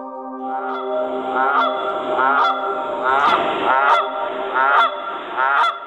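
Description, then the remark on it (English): A flock of wild geese that live in a very tall tree deep in a forest honk repeatedly in an overlapping, rhythmic chorus, loud, with harsh nasal calls roughly every half second and no voices. “This tree was the home of a flock of wild geese.”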